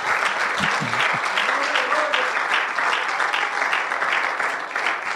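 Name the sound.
audience applauding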